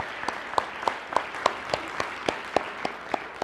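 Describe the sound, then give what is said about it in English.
Audience applause at a church thanking people for their ministry, with one pair of hands clapping in a steady, even rhythm above a softer, diffuse wash of crowd clapping. “Let's just give them a round of applause and thank them for their ministry.”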